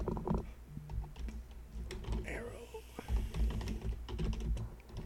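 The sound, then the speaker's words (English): Rapid, irregular clicking of typing on a computer keyboard, a steady patter of sharp key taps continuing throughout, with a voice briefly talking over the keystrokes as the typist sounds out the words being typed. “I have to sound out the words as I type it.”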